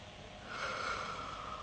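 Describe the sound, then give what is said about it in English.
A person breathes once in a room among statues and dummies, a soft, airy, hissing breath that swells after a short pause and holds steady for about a second, with no talking. “Somebody else in this room is breathing.”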